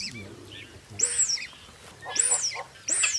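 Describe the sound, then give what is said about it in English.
A dik-dik antelope gives wheezy, squeaking alarm calls, three high whistling bursts spaced about a second apart, each sliding and rasping, over a low background rumble. “So did you hear those wheezy squeaks? Can you guess who it is?”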